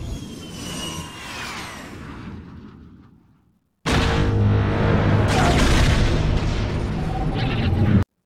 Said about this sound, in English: So here's a clip of the seismic charge going off in Attack of the Clones.